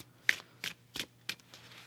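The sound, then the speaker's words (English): A deck of cards being shuffled, with a series of quick, crisp riffling bursts at a steady pace over a faint low hum, no voices. “It does sound good hearing the cards shuffle.”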